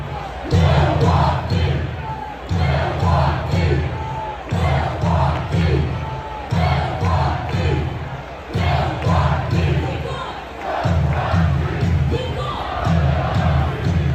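A loud, dense crowd of thousands, outside on an uncomfortable night to watch the Bucks and the Nets basketball game, roars and shouts without pause, while heavy low thumps pulse steadily about every two seconds underneath the din.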